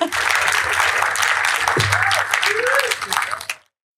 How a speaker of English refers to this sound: Please can we give a huge round of applause for Dr. Tracey.